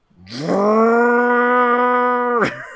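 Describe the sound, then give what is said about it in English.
A voice imitates snow blowers and generators starting up early in the morning after a snowy night: a low, buzzy hum that climbs in pitch, then holds a steady, loud engine-like drone for about two seconds before cutting off. “Everyone's snow blowers and generators starting up.”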